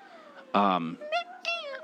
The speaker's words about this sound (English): Put the cat down. She hates you. Put the cat down. She hates you. She really hates him. She really does.